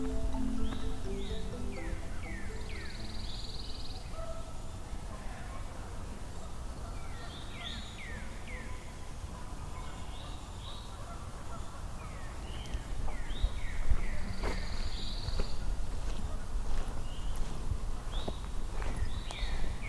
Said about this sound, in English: Pine warbler.